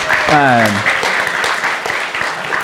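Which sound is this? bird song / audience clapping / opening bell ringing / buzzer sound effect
audience clapping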